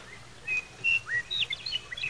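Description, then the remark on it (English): Meadowlarks singing: a string of clear, flute-like whistled notes and slurred phrases, one after another, moderately loud over a soft outdoor hiss, with no voices. “Hey, listen, meadowlarks.”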